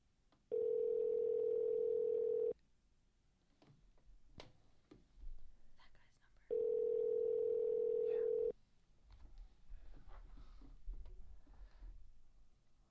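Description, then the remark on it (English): Two steady, loud ringback tones of about two seconds each, separated by a pause of a few seconds, as an outgoing phone call rings. Faint clicks and low background noise fill the gaps. “We'll see if he even answers. And we'll see if Mayhem's going to call. Answer the phone.”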